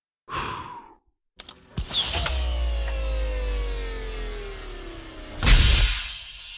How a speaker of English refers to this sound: She blew a kiss at her reflection in a small mirror by the door. It beeped and the golden door opened.